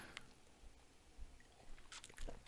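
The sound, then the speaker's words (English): A quiet first sip of bourbon: soft wet slurping and lip-smacking mouth sounds, with a few small clicks and a swallow, no talking. “I haven't drank a bourbon in a couple days, probably 5 days in that first sip sometimes, man.”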